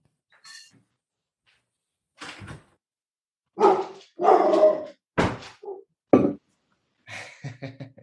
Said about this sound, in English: I told you, yeah, this is a live podcast, and I'm recording from my house, and my dog is going to start barking because we also have somebody here.